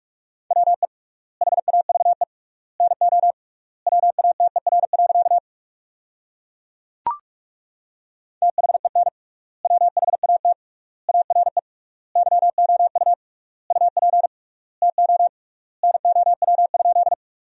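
Fast Morse code at about 45 words per minute, sending practice sentences built from the top 100 words with triple word spacing: a steady mid-pitched tone keyed in rapid dots and dashes, grouped into words with long pauses between them. A single sharp click breaks a gap midway.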